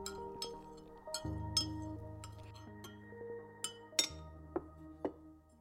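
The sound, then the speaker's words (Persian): Freshly brewed tea is poured into a small white cup, and a small, delicate spoon clinks against the cup in sharp, irregular taps, roughly a dozen over a few seconds, with soft sustained musical tones running underneath. “حالا در فنجان کوچک سفید چای تازه دم صبر کرده رو میریزم. ما شاید با ظریف‌ترین قاشق خانه، همه کوچکی.”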